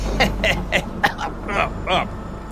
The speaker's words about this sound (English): I cough, because it turns out I'm a smoker now, so narratively I'm allowed to cough.